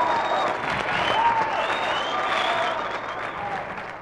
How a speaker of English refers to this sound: How about a big hand?